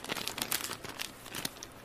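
Wrapping paper crinkles and rips in a quick flurry of sharp, papery tears and rustles, with no one speaking as the gift, a red hat, is pulled open.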